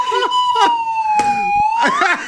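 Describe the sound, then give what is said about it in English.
A steady, reedy slide whistle holds a single mid-high note that sags slightly, then sweeps upward at the end, while short broad bursts of other sound pop in underneath. “Is that a wood whistle? Like slide whistle?”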